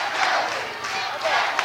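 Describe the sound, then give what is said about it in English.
A large arena crowd at a wrestling match chants "Let's go, Dustin" for Dustin Rhodes and roars enthusiastically, a dense, sustained wall of many voices with rhythmic swells, loud and continuous throughout. “Hear this enthusiastic crowd chanting, "Let's go, Dustin."”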